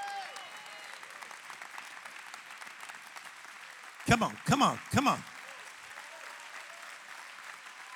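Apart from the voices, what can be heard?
audience clapping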